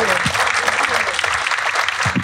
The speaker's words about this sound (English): Please give a big round of applause to Francesca Simon and Charlie Higson. Thank you.